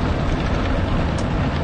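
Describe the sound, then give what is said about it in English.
An automatic car wash sprays a car with multicolored foam to get bird droppings off, heard from inside the car as a steady, loud rushing and low rumble that carries on without a break, with no voices. “Could you imagine the windows weren't closed while I was fucking doing this wash?”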